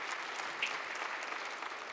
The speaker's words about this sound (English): You can applaud that.